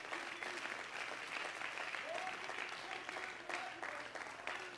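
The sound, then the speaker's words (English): An audience at a church service claps steadily in praise to the Lord, a dense wash of many hands that stays fairly even throughout, with faint voices scattered underneath. “I'd feel better right now if you'd just clap to the Lord and give him praise for what we feel.”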